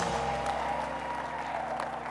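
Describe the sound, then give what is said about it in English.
An audience claps their hands together in a steady, dense wash of applause that stays loud throughout, with a sustained musical tone droning underneath. “Come on, clap your hands and scream like I'm talking to you.”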